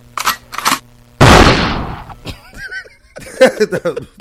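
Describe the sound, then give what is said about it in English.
A single loud gunshot sound effect blasts out and rings off over about a second, preceded by a couple of short sharp bursts and followed by chattering, laughing voices. “Gunshot.”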